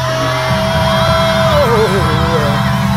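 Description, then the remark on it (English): An audience at a worship service screams and cheers in a loud, continuous roar that fills the whole stretch, with a high sustained voice or tone wavering above the crowd noise. “Let me hear y'all scream one more time.”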